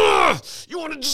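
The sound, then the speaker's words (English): A person voices a loud, strained groan that bends downward in pitch, followed by a shorter tight grunt and a breathy exhale, imitating someone clenching and holding their breath while grappling with another person on the ground. “For example, I'm constantly clenching my breath.”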